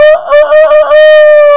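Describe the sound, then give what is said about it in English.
A rooster, flying out of a chicken pen, lets out one loud, sustained squawk that wavers and rattles at first, then holds a steady, piercing note until it cuts off. “All of a sudden, coming flying out of the chicken pen was the rooster.”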